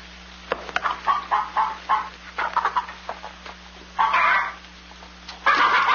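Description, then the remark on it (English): Chickens cluck in quick, irregular bursts, fairly loud, with a couple of longer, harsher squawks toward the end over a faint steady hum. “Well, feed the chickens.”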